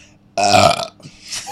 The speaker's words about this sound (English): I just want to say that in all the shows, I've never burped so loud. And so much. So much. We're like... Beer makes you burp.